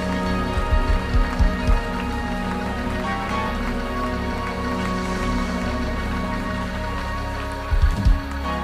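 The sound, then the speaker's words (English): A church audience claps steadily in praise of God after a prayer, in a dense, continuous wash of applause, with sustained musical tones humming underneath and a few low thumps near the start and end. “And can you clap your hands and praise him one more time for what he's about to do.”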